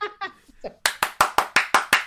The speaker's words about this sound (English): And he's clapping. And he's clapping. Let's run that back for the people.